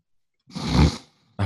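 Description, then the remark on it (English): A voice imitates a snore: one rough, rattling inhale that swells and fades over about half a second, low and throaty with a breathy hiss, followed briefly by the start of another sound. “Snore again.”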